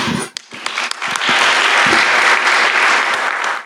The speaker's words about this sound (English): So a strong applause.